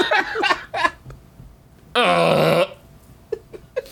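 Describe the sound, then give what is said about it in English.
A voice makes mouth fart noises: a few short sputtering bursts, then one loud, buzzing raspberry lasting about half a second, followed by faint scattered pops. “I was going to take this pig to the county fair, but I got a chicken to mouth farts the alphabet.”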